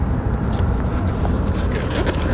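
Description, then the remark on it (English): Steady, loud low rumble of a car engine and tire-on-road noise heard from inside a moving vehicle, continuous throughout with no talking. “I think it'll be better because the noise of the car is too loud.”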